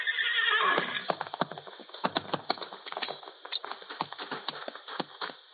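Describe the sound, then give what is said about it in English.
A horse lets out a loud, shrill whinny, followed by a rapid, uneven clatter of hooves clip-clopping, with no voices present, as Eileen's horse throws her about a mile from the house. “It was about a mile from the house that Eileen's horse threw her.”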